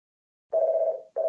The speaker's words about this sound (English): Oh, sorry. Phone's ringing there. I just put it on.